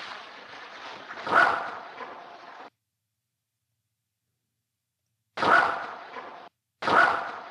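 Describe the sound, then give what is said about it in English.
A dog gives three sharp, fairly loud barks, one early and two close together near the end, over a steady background hiss broken by abrupt dead-silent gaps. “There's just a random dog bark.”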